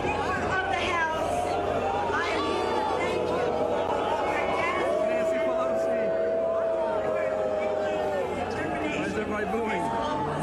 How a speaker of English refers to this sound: Like, for example, Speaker Pelosi getting booed at the Global Citizen concert in New York.